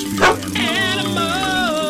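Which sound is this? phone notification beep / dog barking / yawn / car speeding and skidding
dog barking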